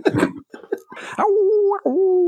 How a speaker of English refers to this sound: Listening to my dogs. Shut up that damn dog.